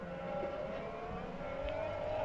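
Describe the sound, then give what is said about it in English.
Formula 1 car engines, a Ferrari followed by a Mercedes, scream past in a continuous, loud, high-pitched whine, the pitch dipping and rising as the cars go by, with no voices. “This is what an F1 engine actually sounds like.”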